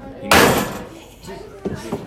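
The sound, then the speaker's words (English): A door falls outward after its loose screws are taken out, landing with one loud bang that rings briefly and fades, followed by quieter sounds that may be voices. “As he took the last one out, the door fell outwards with a huge bang.”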